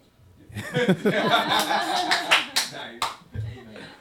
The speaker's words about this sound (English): Why do we always clap when we laugh? Is this like a natural thing?